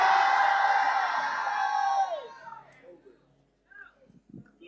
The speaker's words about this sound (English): Help. Help. Help! Somebody scream, help! Somebody scream, help!